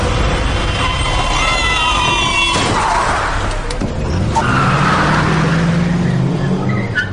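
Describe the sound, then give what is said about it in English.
A car engine roars loudly with screeching tires as the car approaches, then sharp crashing impacts break through before the engine noise carries on underneath. “It was like slow motion, watching the car approach.”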